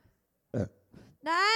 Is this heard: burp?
yes